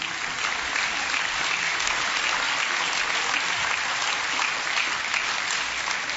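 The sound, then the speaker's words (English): Steady applause from a crowd for people whose names are being read out in the evening, a dense wash of many hands clapping at once with no break, moderately loud and even throughout, with no voices standing out. “I'll clap for him anyway, it's all right.”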